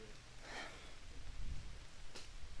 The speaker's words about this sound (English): Try to get out of this rain.